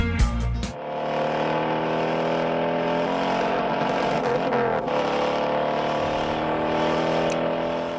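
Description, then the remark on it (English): A loud engine of a green 1968 Mustang roars continuously after a brief harsh burst at the start, its rumbling pitch rising and falling as the driver revs and double-clutches through gear changes. No voices are heard. “that's Steve McQueen in the green 68 Mustang, and he's double-clutching, having a great time”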